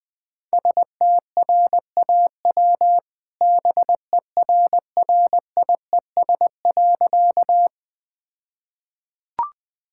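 Morse code at 20 words per minute, spelling out a joke: a steady mid-pitched tone keyed into quick dots and dashes for several seconds, then silence ending in a single brief click.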